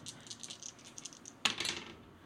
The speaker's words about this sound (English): So it's it would be prowess. So roll three dice.